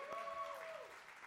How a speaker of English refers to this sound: Let's give my wife a round of applause. She's so great.